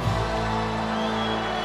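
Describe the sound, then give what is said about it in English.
A large arena crowd at a WWF wrestling event stands and cheers for the effort of two athletes, a loud, steady roar of many voices blending together, sustained without a break for a couple of seconds. “And these people are standing and cheering for the effort, for the desire, for what they have just seen from two phenomenal athletes.”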